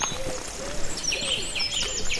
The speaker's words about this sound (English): What's that? That's a song thrush. Oh. So it's repeating that phrase. Yes.